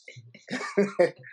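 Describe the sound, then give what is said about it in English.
A person coughs several times in quick succession, fairly loud, the harsh throaty bursts coming in a rough cluster after a brief low grumble. “We ain't gonna have shit if you can't be coughing like that.”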